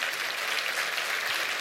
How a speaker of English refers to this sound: Stand to your feet and clap your hands all over this house.